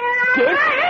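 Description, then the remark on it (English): A big cat with yellow eyes, sitting in a wing chair and being told to get down, lets out one long, loud, drawn-out yowl, its pitch wavering and rising in a complaining, protesting tone. “Come on, cat. Get down. Get off my chair.”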